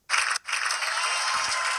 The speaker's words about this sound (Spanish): Los aplausos de la audiencia. Mi parte favorita.